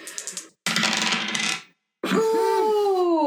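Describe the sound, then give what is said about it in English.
Dice are rolled for an intellect check in a tabletop role-playing game, rattling in a quick burst of clicks, then tumbling noisily across a hard surface before one spins down with a ringing, falling whir as it settles. No voices are heard. “Roll intellect.”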